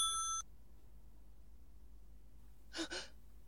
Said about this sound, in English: Oh, let it ring. Let it go on ringing. It's a trick of some kind. I won't answer it. I won't even if it goes on ringing all night. You ring. Go ahead and ring.